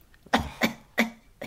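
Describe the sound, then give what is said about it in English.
A run of four short, harsh coughs in quick succession, fairly loud, each a sharp burst with a brief pause before the next; no talking. It is Tiny Tim coughing at the end of the film. “This, and then when Tiny Tim coughs at the end, I'm dead.”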